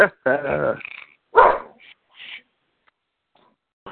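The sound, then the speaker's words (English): A dog barks: a long, harsh bark, then a second sharp one, trailing off into a few fainter yips before going quiet. “Oh, barking again.”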